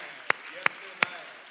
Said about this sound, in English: Come on, somebody, clap your hands to the Lord this morning.